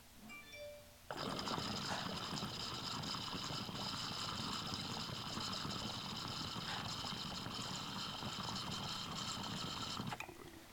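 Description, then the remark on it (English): A small mini triple double engine starts up abruptly and runs steadily for about nine seconds, with a deep, rhythmic chugging underneath a whispery, chirpy purr, then cuts off near the end. No one speaks. “I love the way these mini triple doubles sound. They have like this deep chug to them with this like whispery, chirpy, like kind of purr sound.”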